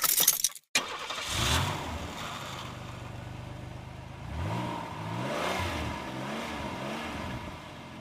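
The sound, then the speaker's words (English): A brief clatter of keys jangling as they are grabbed, then a car engine starts up and revs repeatedly, rising and falling in pitch for several seconds with no one speaking. “So let's go on ahead and grab these keys and get in the car.”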